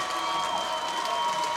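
Stadium fans at a baseball game with USF playing applaud during a pitching change as the pitcher leaves, in a steady, dense wash of clapping and crowd noise, holding an even loudness throughout with no single claps standing out, and a faint constant tone beneath.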